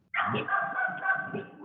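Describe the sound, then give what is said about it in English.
Dogs barking loud in one continuous, drawn-out run of vocalizing with a howling, yowling quality, lasting over a second with no talking. “They're saying Roll Tide also. The dogs are also they're saying trained.”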